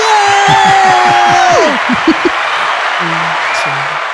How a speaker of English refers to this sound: So I'm very happy to get the applause button ready.